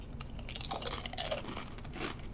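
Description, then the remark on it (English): Crunchy chewing on a brittle wasabi snack, a quick series of crisp, crackling bites and grinding crunches over about two seconds, steady and fairly loud with no talking. “Can taste that wasabi.”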